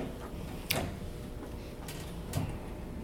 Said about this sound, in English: Yes, please shut that door and that'll help. Thank you much.